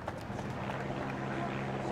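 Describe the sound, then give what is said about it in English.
A helicopter hovers overhead in Edinburgh, where crowds line the streets for the Queen's coffin procession, its low, steady rotor-and-engine drone holding at an even level throughout, mixed with a wash of outdoor background noise and faint crowd murmur. “And now you may be able to hear that helicopter just above us.”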